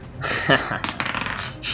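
Dice clatter and tumble across a hard tabletop in a quick burst of bright rattling clicks lasting under two seconds, fairly loud; a player's own dice rolled in a tabletop game, totaling 11.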